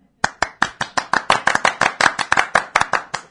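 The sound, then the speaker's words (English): A quick run of about fourteen loud, sharp hand claps in a steady, fast rhythm, made as part of a clapping game, each a crisp slap that stops abruptly, with no voices. “You clap. Ready?”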